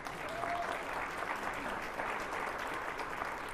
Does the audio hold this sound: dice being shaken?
no